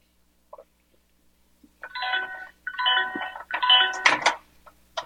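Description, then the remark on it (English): A microwave oven beeps three times to signal it has finished melting something in a bowl, each tone about half a second long with brief gaps, clear, ending with a short clatter. “And when y'all do this, I think maybe it goes without saying, but use a microwave safe cooking dish.”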